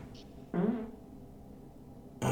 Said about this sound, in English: That fart was a payback.